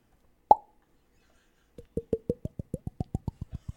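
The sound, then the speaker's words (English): A single sharp champagne cork pop rings out, followed after a brief pause by a quick, steady run of about a dozen hollow glugs as liquid pours out. “Considering it's opening night, I thought it nice to bring a bottle of champagne.”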